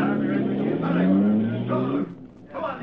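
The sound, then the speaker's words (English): The Green Hornet's car engine revs up with a steadily rising pitch as it is driven away, then drops off sharply as it pulls away, with some muffled voice-like sounds mixed in near the end. “Give me a dose of gas from that gun, then drive away and leave me here.”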